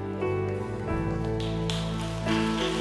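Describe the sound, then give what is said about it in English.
A church audience applauds at the end of a Sunday service in a steady, dense wash of clapping that holds an even loudness for about three seconds, with sustained musical tones ringing underneath. “Can y'all give another hand clap?”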